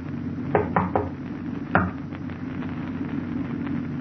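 Three quick knocks on a locked door, then a single knock a moment later, crisp over a steady low background rumble; no one speaks. Someone knocks for Doc to open up.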